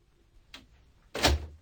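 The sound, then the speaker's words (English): A front door opens: a soft click of the latch, then a louder, brief rush and thump as it swings, with no talking. “Why is it you two always take so long to answer the door?”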